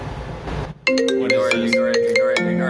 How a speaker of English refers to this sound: Ignore it. Sorry. We got a phone call.